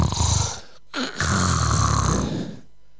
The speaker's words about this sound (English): And so finally he gets down below deck. And then Schreien. He hears loud snoring.